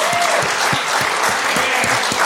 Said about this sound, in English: We got to keep clapping, guys. It's going to take him a while. Come on. He's lapping this up. Yeah. This is all you, mate. You can't jump the stage. This is you. Whoever thought you'd get so much applause for complaining?